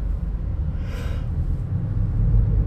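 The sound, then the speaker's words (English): A single breathy, drawn-out yawn rises and fades over about half a second, set against a steady low rumble that continues throughout. “Why the fuck am I yawning?”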